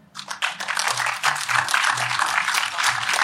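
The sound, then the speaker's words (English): An audience claps steadily in answer to being asked to applaud if they think they've found a soulmate, a dense patter of many hands swelling in quickly and holding at a fairly loud, even level, with a faint murmur of voices underneath. “Can you give a round of applause if you think you've found a soulmate?”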